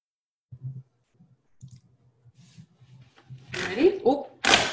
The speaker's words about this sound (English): Oh, chair fart. No, it's not.